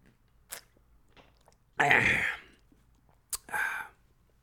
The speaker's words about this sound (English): Quick sip of coffee